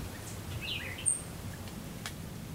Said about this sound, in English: The air softens as the sounds emerging from the open windows change from beeping horns to birds.